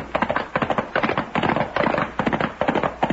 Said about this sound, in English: Sounds like shooting. Yeah, and if we're going in the right direction, the shooting's coming from the Charlton place.